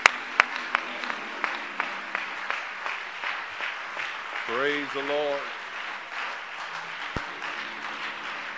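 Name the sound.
audience applause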